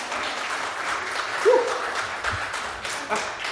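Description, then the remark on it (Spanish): Steady audience applause, a dense wash of many hands clapping at an even loudness for several seconds, with a brief voice cutting through near the middle. “Necesito un aplauso, por favor.”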